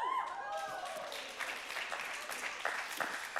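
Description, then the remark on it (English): An audience claps steadily, a dense patter of many hands, with a few whoops at the start before the applause settles into a continuous roar. “Instead of clapping, can you tell me how that happened?”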